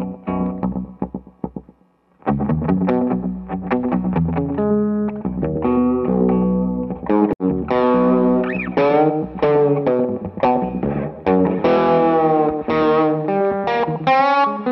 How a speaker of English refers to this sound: Next is the Black Fountain by Old Blood Noise. That's my slap that's always on. And the reason I like this one, it's replicating like the old Fender, what's it called? The oil can delay. Yeah. Which sound amazing. And it's just like a warmer.